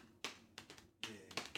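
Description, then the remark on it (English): Fingers thudding on unpowered keyboard keys: a handful of soft, dull taps in a loose, uneven rhythm, some clustered in quick pairs, quiet and heard on their own without any talking. “So really, if you was like to turn a keyboard off and just listen to somebody's hands, it sound like.”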